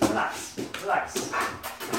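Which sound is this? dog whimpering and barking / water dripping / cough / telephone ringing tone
dog whimpering and barking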